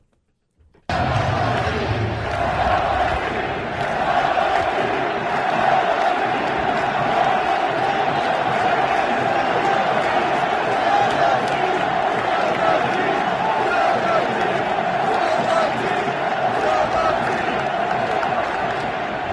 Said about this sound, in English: Can we get the one with just the fans chanting from the stands? See if you can make out what they're saying. This is right before the first pitch.